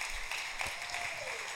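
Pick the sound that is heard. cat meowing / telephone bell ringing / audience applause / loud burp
audience applause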